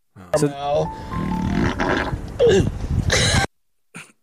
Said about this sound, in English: Here, we got the fart.